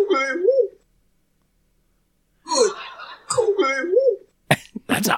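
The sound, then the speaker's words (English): An odd-sounding owl call, a wavering, warbling hoot heard twice with a pause between, each followed by rough breathy noises and a few sharp bursts near the end. “odd sounding owl. Yeah, so that's to bring the owls in, right?”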